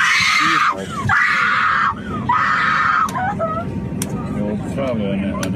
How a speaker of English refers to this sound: In the fetal position on the ground. Screaming.